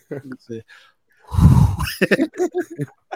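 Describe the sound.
A man talking briefly breaks into a loud, breathy burst of imitated heavy panting, like a horse being ridden, lasting under a second, then goes straight back to rapid talk.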